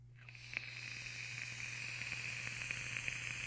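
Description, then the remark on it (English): A steady hiss with scattered tiny crackles and pops from a Bogan Blotto single coil firing inside a Snowcap side-by-side mechanical vape with Banana Cream Beauty liquid, rising over a low constant hum; no one speaks. “You hear the crackle? Please tell me you hear the crackle.”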